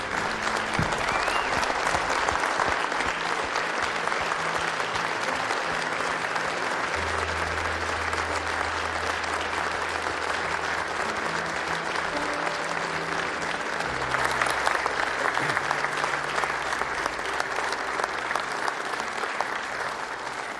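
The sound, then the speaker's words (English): A church audience stands and applauds steadily for about twenty seconds to thank people for their years of faithful service, a dense, continuous wash of clapping with a low musical drone sustained underneath and a slight swell in intensity partway through. “Just stand with me and applaud and thank them for their service.”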